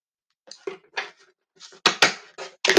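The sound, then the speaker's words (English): A love-and-sex oracle card deck is shuffled in quick, papery bursts of flicking and riffling, growing louder and busier toward the end, with no voices. “Get one more shuffle and everything.”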